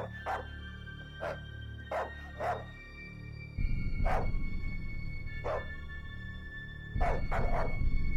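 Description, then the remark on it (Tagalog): A dog barks at night in short, spaced-out bursts, single barks and quick pairs, over a steady low rumbling background that grows louder partway through. “Maya-maya, habang walang tigil na nagtatahulan ang mga aso, may isang kakaibang tahol ako na narinig.”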